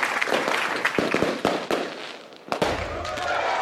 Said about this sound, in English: Well, while you do that, I'll just play some celebration sound effects.